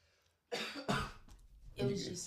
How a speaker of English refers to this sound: My eyes watering, I was like trying to hold that cough for like 30 seconds.